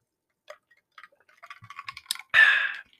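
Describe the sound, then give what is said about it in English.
Ice cubes jingling in a glass of water as someone takes a sip: a quick, irregular run of light, bright clinks that grow busier, ending in a louder, brief sloshing rattle. No one speaks. “So, I guess that I hope you guys can hear this mic's pretty good, and I hope you guys can hear my ice cube jingling.”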